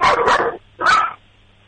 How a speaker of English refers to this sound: Sorry, so yeah, that's every time the doorbell rings or doorbell rings on TV. That's great. That was some solid barking. Yeah, he's an angry little guy. And what kind of dog is your dog again?